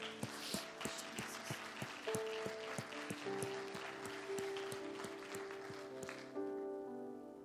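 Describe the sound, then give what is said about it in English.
An audience at a church service claps for Brother Jerry, a steady patter of applause with sharp, fairly regular beats, while sustained organ-like musical tones play underneath. “Let's give Brother Jerry a hand clap.”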